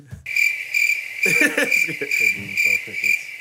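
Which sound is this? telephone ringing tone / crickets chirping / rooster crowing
crickets chirping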